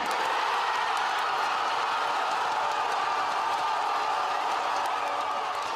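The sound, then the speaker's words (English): A huge stadium crowd of football fans in Mexico City roars continuously, celebrating Mexico's goal against Germany in the World Cup, a dense wall of cheering and shouting that stays loud and steady throughout, with scattered whoops and clapping blended into the din. “So, in case you're a little checked out, the World Cup is underway in Russia, and Mexico played their first game of the tournament against Germany to screaming crowds in Mexico City.”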